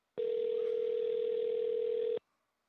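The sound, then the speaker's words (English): A single steady telephone ringing tone sounds for about two seconds, an even electronic hum heard clearly as if through the handset, then cuts off into silence with no one answering or speaking. “They don't have any phone lines working there? All right, we'll have to remember to make this phone call.”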